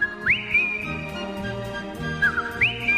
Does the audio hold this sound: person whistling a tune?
yes